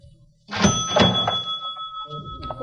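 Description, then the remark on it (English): A cash register at a bar opens with a few heavy mechanical clunks, followed by a bright bell tone that rings on steadily while the drawer rattles. No one speaks. It is opened on a robber's demand in a film scene. “I'm late for an appointment. Open that cash register.”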